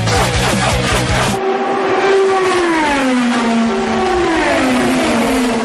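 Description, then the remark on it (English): Race car engines scream past loudly as two drivers run door-to-door off turn 4 racing to the checkered flag, a steady high-pitched roar whose pitch slides and bends as the cars accelerate, preceded by a brief burst of rumbling noise at the start. “Off of turn number 4, two drivers run door-to-door, beating and banging, racing to get to the checkered flag.”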